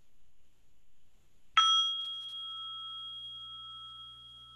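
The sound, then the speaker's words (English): A single meditation chime is struck after a moment of quiet, ringing out with a clear, bright tone that sustains and slowly fades. No one speaks. “As we listen to the chime, let us remember our connection to each other and the world around us.”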